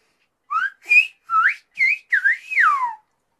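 A short run of clear whistling in six quick bursts of whistled English speech, each gliding up or down in pitch, with the rising and falling contours of spoken phrases rather than a tune. No other voices.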